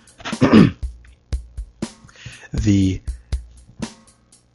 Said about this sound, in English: Pardon me, I'm going to clear my throat.